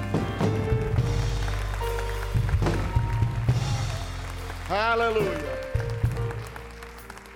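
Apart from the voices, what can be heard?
audience clapping hands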